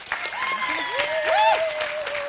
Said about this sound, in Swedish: Okej, okay, då är det upp till publiken alltså att bestämma vem som ska vinna akademikernas fantastiska goodiebag. Ni som tycker att kvinnan med grön filt ska vinna, applådera nu. Och ni som tycker att killen i keps där borta ska vinna, klappa nu!